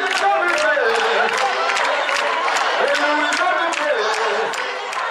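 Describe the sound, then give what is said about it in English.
A large group of church members, mock troops carrying papier-mâché swords, sing together in unison in a big arena, voices filling the space, while steady rhythmic hand clapping keeps the beat throughout at a constant, fairly loud level. “Choirs come and go from the big arena, and the mock troops of the Lord's Chosen with their papier-mâché swords jokingly storm the space from time to time, singing and clapping.”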